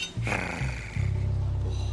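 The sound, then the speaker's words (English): A tiger's deep roar rumbles loud, a thick low growl that swells and holds steady for about a second, with no one speaking. “If you hire Tiger's Protection Services, not only do you get the tiger, but you get the protection of his entire pride.”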